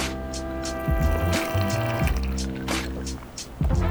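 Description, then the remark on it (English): Someone takes several wet, slurping sips of an Arnold Palmer iced tea lemonade drink, with short bursts of liquid noise over a steady low hum and no talking. “So this is, let's take a little sip of this Arnold Palmer.”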